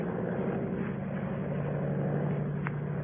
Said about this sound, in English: Suddenly, in the blue evening sky, I saw something. Low down in the south, a monoplane was climbing into the heavens.